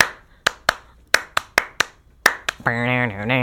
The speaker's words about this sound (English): And so, and that clapping is, like, a really big part of the percussion part of that song. And it's just so dumb and beautiful.